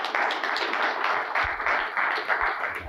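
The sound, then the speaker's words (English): Sustained applause from a sizable crowd in honor of Richard Clark and Scott Salen, a dense steady wash of many hands clapping at once, loud and continuous for the full stretch with occasional sharper claps standing out. “And even though they're not here and they may never see this video, I just want everybody to give a huge, huge round of applause to Richard Clark and Scott Salen for achieving a hypnosis miracle.”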